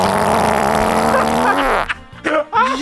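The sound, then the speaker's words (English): A loud, deep fart rips out in one long buzzing, rumbling stretch of nearly two seconds, then cuts off as brief voices react. “Well, this is one that I had from, this is a blast from the past. Yep. Yeah. And this one was called The Deep Ripper.”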